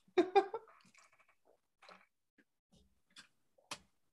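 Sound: sipping water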